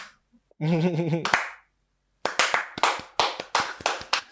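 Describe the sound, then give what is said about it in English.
A short wavering vocal sound, then a pause, then about eight sharp hand claps in a steady, unhurried rhythm, a slow clap given as a shout-out to Hilda Bassi, fairly loud and without other sound. “Like, bad slow bitch clap.”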